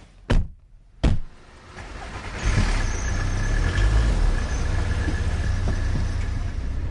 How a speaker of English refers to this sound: What's the plan? Well, basically, we're going to get into my car, I'm going to give you the piece of kit, because I've got to drive, and we're going to measure how much force it takes to pull a flag through the air.